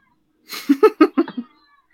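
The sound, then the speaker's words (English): A cat lets out a quick run of about five short, chirpy meows in close succession, moderately loud, with no one talking over it. “You're going to hear little meows now.”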